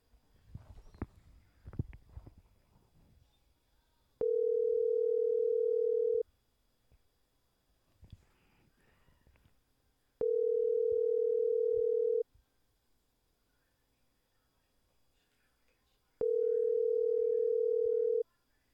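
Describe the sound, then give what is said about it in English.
A telephone line tone after the called woman hangs up: three long, steady, mid-pitched beeps, each about two seconds, spaced by quiet gaps, following a moment of faint rustling and handling noise. “She hung up.”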